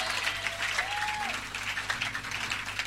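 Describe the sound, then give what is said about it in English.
An audience claps steadily, many hands making a dense, continuous crackle of applause at an even loudness, with a faint tonal hum and a brief rising-falling tone underneath. “As you are clapping, heaven is already happy to download something inside your spirit.”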